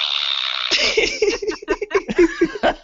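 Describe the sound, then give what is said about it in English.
A fart noise sound effect, a buzzy, harmonic blast under a second long, followed by a string of rhythmic, choppy bursts that sound like laughter. “Is that a fart noise or is that just like a buzzer? That's a fart noise.”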